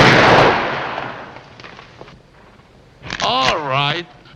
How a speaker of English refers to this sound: That's one of those magnificent Warner Brothers gunshots that we just... Right. So good. I was startled, actually. You'll probably hear that gunshot in many other Warner Brothers films, actually.